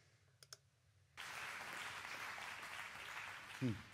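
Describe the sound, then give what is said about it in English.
After a near-silent start with a couple of soft clicks, an audience breaks into steady, dense clapping that fills the rest of the moment, a sustained wash of many hands at moderate loudness. “Everybody's done clapping, blah, blah, blah.”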